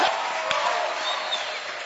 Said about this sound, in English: Are you clapping your hands for Jesus? Clap your hands for Jesus and give the Lord a shout.